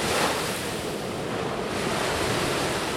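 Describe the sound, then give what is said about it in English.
Black Sea waves wash steadily onto Irakli beach on Bulgaria's Black Sea coast in a continuous, loud roar of surf, with some wind rushing across the microphone and no voices. “Instead, today's Bulgarian environmentalists trace their roots here to the Black Sea coast.”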